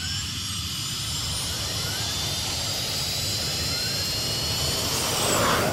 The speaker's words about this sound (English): Just then, a soft whooshing sound from above.